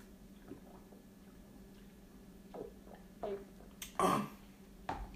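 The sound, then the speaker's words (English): Someone gulps down cold Blue Bonnet juice: a few soft wet swallowing clicks, then one louder, longer gulp and a final short swallow over a faint low hum. “First gulp.”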